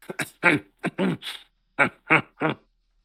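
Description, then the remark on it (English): A voice performs a series of rough, strained coughs and throat-clearing grunts in short bursts, fairly loud, sounding pained and labored, with no words spoken, voicing a character who is becoming badly wounded. “Through his cough, because you could tell he is becoming quite wounded.”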